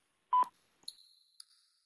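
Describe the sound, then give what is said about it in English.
A U.S. Naval Observatory Master Clock time signal tone marking 21 hours, 16 minutes, 30 seconds Eastern Daylight Time: a short, loud electronic beep, followed by a fainter high-pitched ringing tone that lingers for about a second and is briefly interrupted by a click. No one speaks. “U.S. Naval Observatory Master Clock. At the tone, Eastern Daylight Time, 21 hours, 16 minutes, 30 seconds.”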